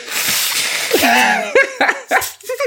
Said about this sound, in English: Yeah, you've got your tissue out already. Let me blow my nose.